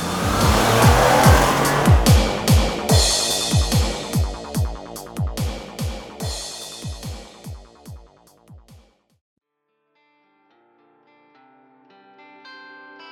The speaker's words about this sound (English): She immediately puts the car into drive and skirts out before Cyber Squash can even make a move.